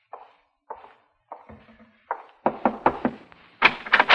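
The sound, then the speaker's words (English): A few spaced knocks on a wooden office door, then a quicker run of firmer raps that grows louder toward the end, with no voices. “Well, don't just stand there. Come in and shut the door.”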